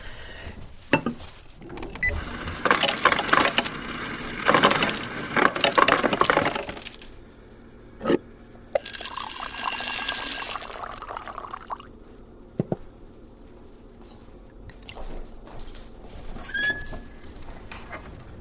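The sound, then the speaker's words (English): Ice cubes clink and rattle sharply into a glass for several seconds, followed by a steady hissing pour of water, with a few scattered clinks afterward; fairly loud, no talking. “I put ice in it.”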